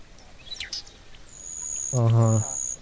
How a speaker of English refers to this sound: But in you the meantime, birds from the wonderful springtime.